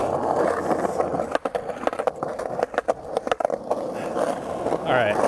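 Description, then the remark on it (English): A skateboard rolls with a steady gritty rumble, then hops the train tracks in a quick burst of sharp clacks and thuds before the wheels settle back into their rolling roar. “Cameron Jim, I'm going to hop the train tracks for you.”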